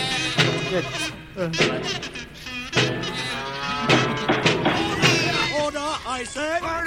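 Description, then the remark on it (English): Loud, overlapping sheep-like bleating from several voices that seem to be imitating the animal, with wavering, drawn-out cries throughout and a run of quick, quavering bleats near the end. “That was a healthy debate that I had to break up using a non-violent method of sheep and an officer better of the peace.”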